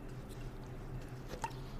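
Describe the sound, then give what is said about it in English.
A quiet sip of a latte, one brief wet slurp near the end against a soft low background hum, with no one talking. “I need a tea break before we spill this tea. Listen. Latte, should I say.”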